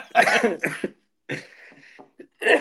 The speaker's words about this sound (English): I've had this cough for about 4 days. It's not COVID because I did a test. And I just can't shift it.